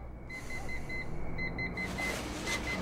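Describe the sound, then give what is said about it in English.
An alarm-like beeping in a quick, steady series of high electronic pulses, made by a human baby with its mouth in another room of an apartment in a TV commercial, repeating without pause over a constant low rumble of background noise. No one speaks. “She's sleeping, and then she hears an alarm going off in another room.”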